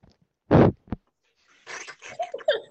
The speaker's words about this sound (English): Wait. Everybody blow on my dice real quick.